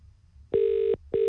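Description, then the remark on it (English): A phone line ringback tone on an outgoing call to a number from the New Zealand phone book: a steady electronic burr about four-tenths of a second long, a short pause, then another begins, clear with no talking. “so let's ring the first hopeful Kylie Jenner”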